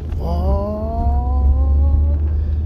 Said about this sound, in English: As soon as I get this car out of my way, I am gone.